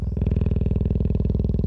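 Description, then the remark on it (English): A female cheetah at a baobab tree in the afternoon purrs steadily, recorded with a pole-mounted microphone about 3 yards away: a loud, low rumbling pulse with a fast, even rhythm that continues unbroken throughout, with no other sounds. “And when it got within about 3 yards of this cheetah, I could see her chest rising and falling, but I could also hear she was purring just the same as any cat.”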